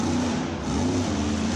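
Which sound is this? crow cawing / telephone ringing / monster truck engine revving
monster truck engine revving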